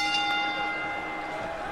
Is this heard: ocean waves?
no